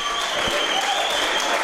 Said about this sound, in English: It goes through. Crowd goes nuts.